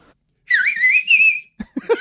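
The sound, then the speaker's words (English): A woman whistles a birdcall imitation: one sustained, warbling high tone lasting about a second with slight pitch wobbles, followed by a voice starting to speak. “for being put on the spot, and this being a professional, which means she does this all the time, sits out by our bird feeder and mocks what's there. Talks to birds.”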